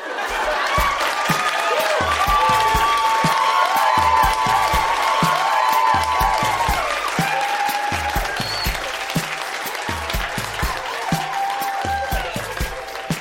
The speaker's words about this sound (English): Yellowknife, that has been Grown-Ups Read Things They Wrote as Kids. Huge round of applause for all of the readers tonight. So good.